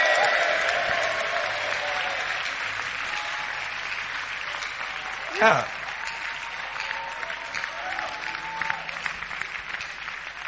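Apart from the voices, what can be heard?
audience clapping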